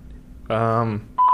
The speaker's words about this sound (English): we'll try calling Bil one more time. Here we go. It's connecting.